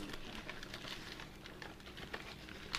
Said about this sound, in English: Pardon the crunching of the paper.